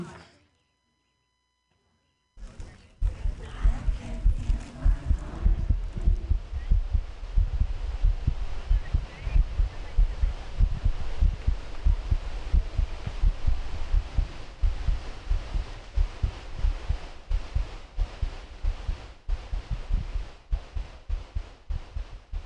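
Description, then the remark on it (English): A heartbeat thumps steadily and loudly after a brief silence, deep low pulses repeating in an even rhythm with a soft hum underneath, continuing to the end. “I can feel my heart beat.”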